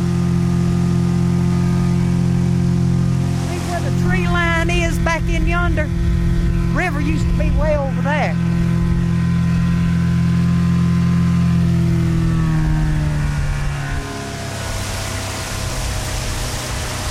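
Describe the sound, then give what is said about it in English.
A small outboard motor on a 12-foot boat on a river drones steadily, a constant low hum that holds throughout, with a person talking over it and the pitch easing down near the end. “She takes me out in a 12-foot boat to show me the source of her anger.”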